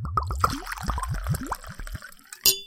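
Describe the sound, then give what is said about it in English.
Whiskey glugs and gurgles as it's poured into a glass, the bubbly pulses rising in pitch as it fills, then stopping, followed by a single bright glassy clink of one glass hitting the bottle. “And now here's the pour.”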